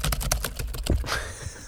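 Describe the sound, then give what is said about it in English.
Quick clacking of keys on a computer keyboard, a rapid run of crisp clicks that thins out toward the end, with no talking. “I'm typing.”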